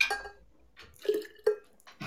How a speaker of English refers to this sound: You're spilling shit all over your fucking apartment. I couldn't pour that well.